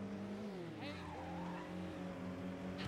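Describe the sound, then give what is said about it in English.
A video game race car engine roars steadily as the nitrous boost kicks in, its pitch shifting upward, with brief hissing whooshes layered over the continuous, loud engine drone. “There you go, through nitrous.”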